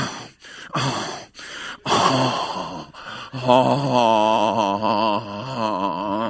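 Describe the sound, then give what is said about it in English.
A voice imitates labored breathing: a series of sharp, raspy gasping inhales that stretch into a strained, wheezing moan, loud with no words spoken. “And I start getting a breathing disorder.”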